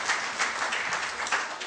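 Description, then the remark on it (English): An audience claps steadily, a dense patter of many hands forming a bright, sustained wash of applause with slight swells, fairly loud and without speech, applauding a participant as he goes back to his seat. “Give him a clap as he goes.”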